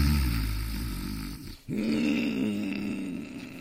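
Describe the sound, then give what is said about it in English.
A man's loud, rasping snore in a bedroom, breathing through his mouth, rumbles low and gravelly, with a brief pause near the middle before a second long, throaty roar. No one speaks. “And that roaring indicates he's a mouth breather.”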